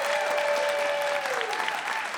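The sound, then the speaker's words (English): A live show audience claps for visiting family members who traveled to be there, a dense, loud wash of applause that holds for a couple of seconds, with a faint sustained tone running beneath it before fading slightly. “Big round of applause for them as well.”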